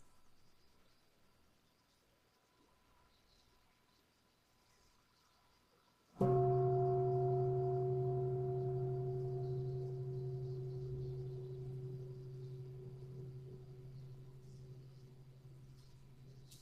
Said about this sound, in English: notice your relationship to it, and particularly if there's some kind of relaxation that happens when you hear the bell and hear that the sitting's over. What might that tell you about any tension that was there prior to hearing the bell?